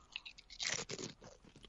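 Someone crunching pumpkin pie kettle chips: a burst of crisp, crackly bites peaks in the middle, then trails into softer, irregular chewing crackles. No one speaks.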